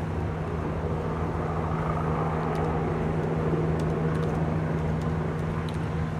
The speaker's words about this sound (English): The helicopters are out. I will say that the helicopters I've seen in Brooklyn are not nearly as low as the ones in D.C. were that other night.